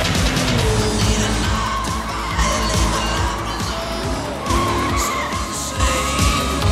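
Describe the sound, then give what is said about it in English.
Engines roar through a frantic car chase in which Crockett and Tubbs in a Ferrari Testarossa evade goons in a white Ferrari, with a car flipping over; tires squeal and skid in repeated bursts, loud, with a dense, churning mix of motor noise throughout. “Thus begins an actually super fun car chase.”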